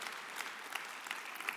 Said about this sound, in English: Can you imagine 2,000 churches in 20 years? Yeah, somebody clap. That's a hero of the faith right there.